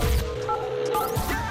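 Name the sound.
telephone dialing tones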